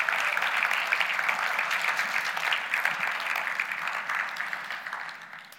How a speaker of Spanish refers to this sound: ¿Podemos darle un aplauso al Espíritu Santo?